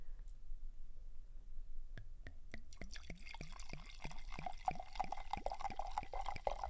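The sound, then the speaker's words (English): Wine glugs into a glass in quick, quickening pulses, with a faint rising ring as the glass fills. A brief soft murmur sits underneath before the pour starts. “The wine pour.”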